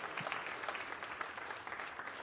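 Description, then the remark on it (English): A church audience claps and cheers, answering a call to make some noise if the King of Kings has ever given them something, in a steady, dense wash of applause that holds at an even level throughout, with no single voice standing out. “Somebody in here, make some noise this morning if the King of Kings has ever given you something.”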